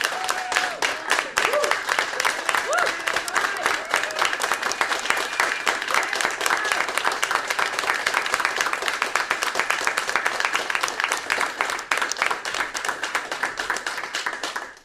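An audience breaks into sustained applause as a morning show is dedicated to a man in his honor, dense overlapping claps holding steady and loud for about fifteen seconds with occasional whoops and cheers mixed in, tapering slightly at the very end.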